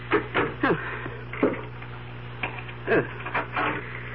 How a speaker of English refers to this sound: I locked the door behind me. I always do.